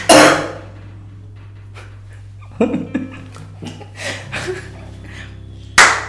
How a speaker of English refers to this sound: Okay. Do a clap. Good evening. Clap. Do a clap.